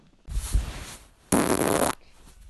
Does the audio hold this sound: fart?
yes